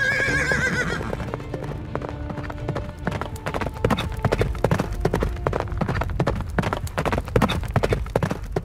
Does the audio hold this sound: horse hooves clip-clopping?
yes